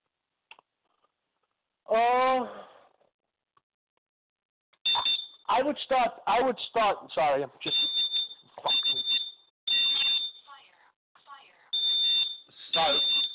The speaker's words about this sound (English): This is what live TV sounds like. Yeah, as my fire alarm goes off, I'm trying to shut it off.